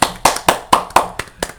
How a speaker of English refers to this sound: That, I think, deserves a round of applause.